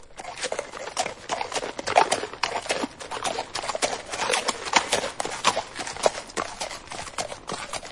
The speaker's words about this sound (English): All right, you got it? All right, what was the sound? It was horses. Horses.